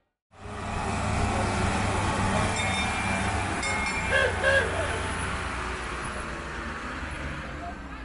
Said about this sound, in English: All aboard! We're on the little train that goes from Jerusalem's Jaffa Gate and weaves through the sacred old city down to the Western Wall to pray.